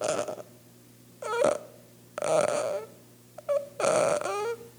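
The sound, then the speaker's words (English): A voice imitates a dying man's exhaled breaths: four raspy, groaning out-breaths, each under a second, separated by short pauses, fairly loud. “And then he'd go, and he'd breathe out.”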